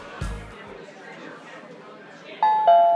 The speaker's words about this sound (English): Oh, there's the doorbell. Can somebody get that?